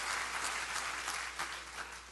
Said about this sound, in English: Somebody needs to clap your hands and say, "Glory to God."